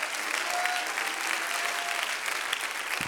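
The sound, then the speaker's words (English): A church audience claps steadily to thank God for a great harvest, a dense wash of overlapping handclaps with no clear rhythm, sustained and fairly loud throughout, with a faint tone and murmur underneath. “Clap your hands and thank God for a great harvest.”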